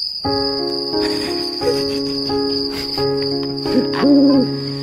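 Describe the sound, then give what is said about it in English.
A steady, shrill cricket trill runs throughout beneath sustained humming tones, and an owl-like hoot rises and wavers near the end. No one speaks. “What is this owl?”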